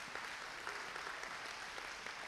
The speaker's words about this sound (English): Come on, it's good, isn't it? Oh, no, you can clap for that.